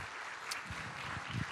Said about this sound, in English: Come on, let's give all of them that prayed that prayer a great round of applause.